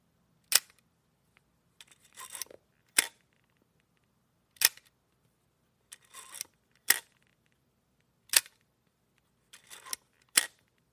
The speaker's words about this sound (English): There was a whole series of Fed cameras. These are essentially Soviet versions of the Leica, and it feels pretty heavy. It's built like a tank, and it's got a really great shutter sound, so here we go.